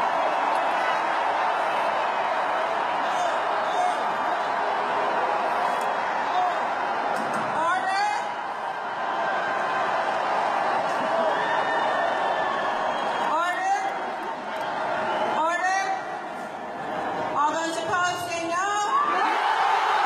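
A large crowd at a convention boos and shouts "no" during a voice vote on passing the temporary convention rules, in a steady, loud roar of overlapping voices, with sharper individual yells rising above the din every few seconds.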